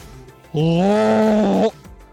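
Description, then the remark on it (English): A person lets out a single sustained, throaty roar lasting about a second, loud, imitating a big cat with a strained, growly voice. “Yeah, do the roar.”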